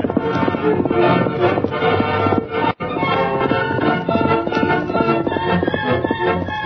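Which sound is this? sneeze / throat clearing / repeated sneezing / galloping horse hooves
galloping horse hooves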